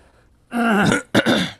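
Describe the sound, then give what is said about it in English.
A person clears their throat twice, a longer rasping rumble followed by a shorter, sharper one, with no talking around it. “Hold on a second, I got to clear my throat.”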